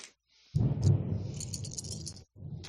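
A deep rumble of thunder during a thunderstorm rolls in suddenly and loudly, lasting a couple of seconds with some crackling on top, then cuts off before a second burst begins.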